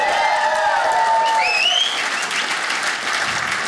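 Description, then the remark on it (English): A stand-up comedy audience applauds loudly and steadily for America, a dense wash of clapping, with a couple of rising whistles cutting through partway in before the clapping carries on evenly to the end. “Let's get a round of applause for America.”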